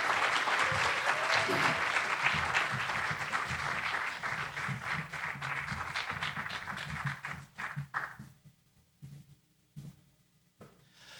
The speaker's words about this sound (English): Like that, I did not ask them to clap. In fact, it showed me up a little, but they did a tremendous job. So thank you very much.